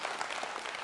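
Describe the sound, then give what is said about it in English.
A brief burst of audience applause during a motivational speech, many hands clapping in a dense, steady patter at moderate volume with no voices standing out. “Somebody clap. You're going to clap.”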